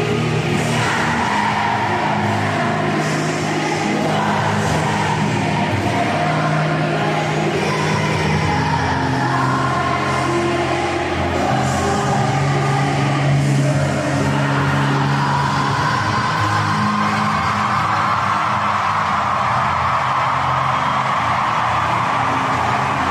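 A huge crowd sings along in unison over a live performance, a dense, roaring wash of voices that holds steady and loud throughout, with the melody rising and falling beneath it.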